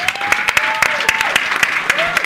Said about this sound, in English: Thank you once again. Please give them a warm round of applause.